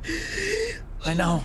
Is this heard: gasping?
yes